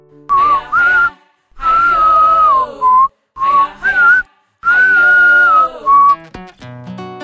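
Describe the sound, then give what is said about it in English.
A person whistles a bird-like tune in four bright, warbling phrases separated by short pauses, followed by a few sharp clicks and tones at the end. “There really was no good reason why girls can't whistle when boys can.”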